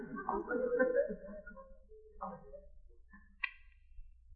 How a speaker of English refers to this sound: Just put your hand on the knob and turn it. Oh, it would be a squeaky door.